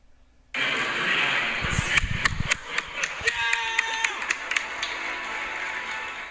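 A ballpark crowd cheers in a sustained, loud roar, punctuated by sharp claps and shouts, with some brief whistle-like tones in the middle before the noise gradually eases.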